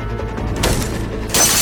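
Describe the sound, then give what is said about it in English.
A tiny reinforced window in a locked door is struck hard with a fire extinguisher, with two loud, sharp crashing impacts about a second apart over a low rumbling background, the second blow bursting brighter as the glass gives way. “It takes several shots, but she's able to smash out the glass. As soon as we hear glass breaking”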